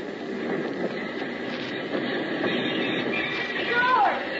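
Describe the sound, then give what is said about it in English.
A work train rolls into the station back in La Paz with a steady rumble and clatter, building slightly before a brief high wheel squeal near the end as it slows. Indistinct voices murmur underneath. “If your name is George Valentine, it's a mighty pleasant feeling when you step out of the bullet-riddled plane on solid ground, and when, a couple of days later, you jump off the work train back in La Paz.”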